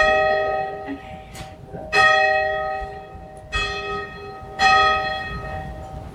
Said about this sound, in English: ring the bell.